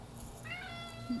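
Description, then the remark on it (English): A cat named Xanders lets out a single drawn-out meow, rising in pitch then bending down, with a brief lower chirp at the end. No one speaks over it. “He just wants to yell at me.”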